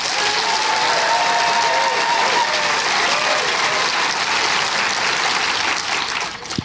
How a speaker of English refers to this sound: And rather than doing shouty, because obviously, you know, one thing and another, we can do applause, okay? So, applause for Nick's list.